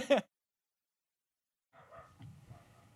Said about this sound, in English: Luna goes outside and immediately starts barking at the wind